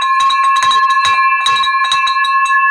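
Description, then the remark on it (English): A handheld victory bell rings rapidly and loudly, with bright sustained metallic tones and a rhythmic clanging of repeated strikes filling the whole stretch, with no talking. “First of all, let's ring this victory bell.”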